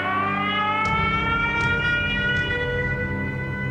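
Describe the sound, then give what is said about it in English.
A loud air raid siren wails steadily in the western Ukrainian city of Rivne at dinnertime, its rich, sustained tone drifting slightly in pitch throughout, with a few faint clicks over it and no voices. “The next day, a Taiwanese medical team in the western city of Rivne was interrupted at dinner by air raid sirens.”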